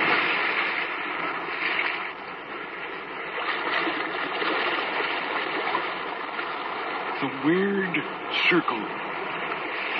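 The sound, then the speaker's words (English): A steady, restless roar of sea waves surging and washing, fairly loud and continuous throughout, with a brief wavering tone rising and falling near the end. “Restless sea, we are met to call from out of the past stories, strange and weird.”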